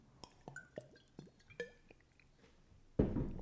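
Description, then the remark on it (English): Wet gulping as someone drinks water, about five quick swallows in a steady rhythm, followed by a louder breathy rush at the end. No one speaks. “Sip of water break. This break brought to you by water.”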